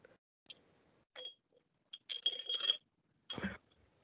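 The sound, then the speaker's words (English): Glasses clink together in a toast, a few sharp, ringing taps, with brief handling sounds between them and no one speaking. “Cheers.”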